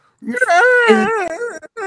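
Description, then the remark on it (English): A voice imitates a crying yeti with a loud, wavering, wordless wail. The whimpering pitch rises and dips over about a second and a half, broken by a brief catch. “They're just crying all the time.”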